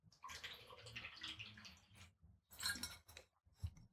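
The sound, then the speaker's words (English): Someone drinks water during a five-second pause, with wet sloshing and gulping sounds in uneven bursts, a brief pause, then a few more swallows. No one speaks. “I'm going to take 5 seconds to drink my water.”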